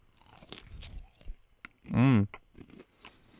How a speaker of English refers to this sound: I'm gonna eat this chicken strip very loudly.